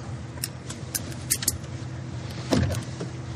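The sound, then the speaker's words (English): Inside a car, the standard power door locks actuate with a solid mechanical thunk, preceded by a few light clicks and rattles over a low engine hum. “Power door locks, standard, of course.”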